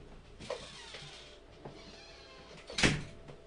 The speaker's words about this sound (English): Those dogs.